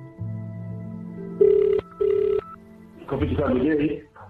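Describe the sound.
An outgoing phone call rings twice in quick succession, a clear double ring tone over a low hum, and then someone begins speaking as the line connects.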